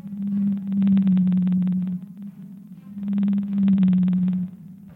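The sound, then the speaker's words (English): A whale calls in two long, low moaning tones, each sustained for about two seconds with a brief pause between them. The sound is loud, and no one speaks. “I promise, they might be hard to understand in some ways, but they're probably a lot easier to understand than whales.”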